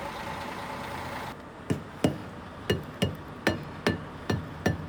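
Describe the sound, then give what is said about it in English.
A hammer knocks on truck tyres to check for punctures or flats: about eight sharp thunks in a fairly steady rhythm, following a stretch of low engine rumble that cuts out just before the strikes begin. “On a truck, it's important to knock the tyres with a hammer or steel bar to check for punctures or flats.”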